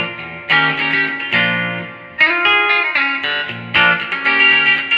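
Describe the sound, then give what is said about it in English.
Bright, chimey electric guitar chords strummed on the bridge pickup of a guitar with toaster pickups, each ringing out and sustaining before the next change, played solo at a steady loud level with no voices. “It's got toaster pickups that, I mean, I gotta say, dude, sound like a freaking Rickenbacker.”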